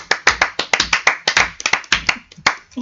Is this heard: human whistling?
no